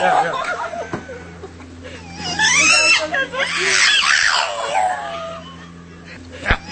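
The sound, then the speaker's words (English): A dog makes drawn-out, wavering vocalizations that sound almost like a voice saying "roar," several sweeping calls over a steady low hum. “You ever see that dog on the internet that actually was going, oh, roar, roar?”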